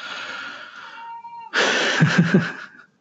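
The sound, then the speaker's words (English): A cat outside yowls twice: a drawn-out, wavering cry followed by a louder, harsher wail, with no talking. “I'm sorry, my cat's outside.”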